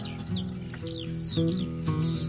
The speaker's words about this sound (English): In the sky a bird was heard to cry.